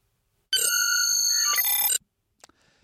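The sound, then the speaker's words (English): A Star Trek transporter beep: a bright, shimmering electronic tone with ringing overtones, holding steady for about a second and a half, shifting pitch near the end, then cutting off abruptly. No one speaks. “You're getting some props, and your props are a transporter beep.”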